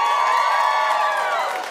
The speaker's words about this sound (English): but can I just point out, that was a much bigger applause for her than it was for me.